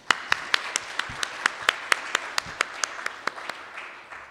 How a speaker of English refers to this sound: I think he definitely deserves a round of applause.